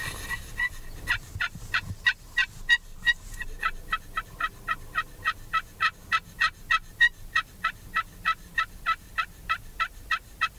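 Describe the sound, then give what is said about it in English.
A wild turkey gobbles in a long, rapid series of rattling notes, loud, with the burst pulsing steadily for several seconds and no talking. “That first gobble.”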